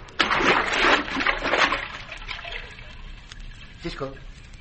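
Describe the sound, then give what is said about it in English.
A loud splash as a man plunges into water to swim under it, followed by fading sloshing and bubbling, with a brief muffled vocal sound near the end. “But I'm going to have to swim under the water in case someone is watching from above.”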